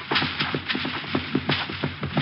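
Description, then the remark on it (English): Horse hooves clip-clop in a quick, steady rhythm, each sharp knock evenly spaced over a low background rumble, with no voices. “Hey, a horse. Ahead of me somewhere.”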